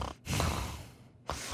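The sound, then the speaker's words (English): A person imitates dogs snoring loudly while asleep, as heard during a Zoom call: a short breathy snort, then a long rasping inhale-exhale, then the start of another, moderately loud with no speech. “she showed me her dogs were asleep behind her and they were just snoring so loud”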